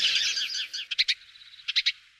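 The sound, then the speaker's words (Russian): A budgerigar chirps, a bright warbling chatter followed by two quick bursts of three sharp chirps each, with no other sounds around it. “Ясуси, ИНОУЭ, волнистый попугайчик.”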